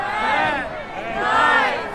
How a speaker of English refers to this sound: Wondering what the new year would bring as the crowd counted down around me.